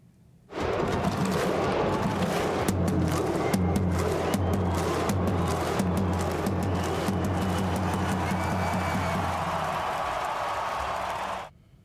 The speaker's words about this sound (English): It's now time to talk about the Canberra Raiders. But it is only fitting to talk about the Raiders with the start of a Viking clap.